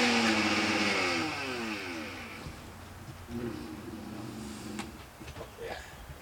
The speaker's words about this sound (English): And part of the reason is I know that I'm doing a smaller bit. So you could do this with your immersion blender in a little cup or something, that yeah, might work as well. I brought that as a backup.